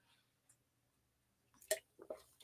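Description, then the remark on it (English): Someone sips a watermelon drink: a brief wet slurp followed by a couple of quick swallowing and lip-smacking sounds after a near-silent pause. “As I'm sipping my watermelon, what the hell is this?”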